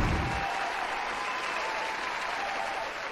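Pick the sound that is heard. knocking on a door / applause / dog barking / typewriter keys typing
applause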